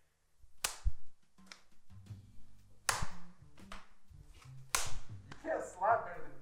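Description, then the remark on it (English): Three sharp, loud hand slaps ring out about two seconds apart, each a crisp smack, with murmured voices and a brief excited vocal sound in between. “You can't slap better than me.”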